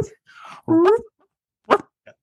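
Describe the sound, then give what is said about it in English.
Human voices imitate dog barks: a few short, loud, throaty woofs spaced irregularly, one longer and more drawn out, with a faint yip trailing at the end and no other talking. “Wait, we got to bark for the underdog.”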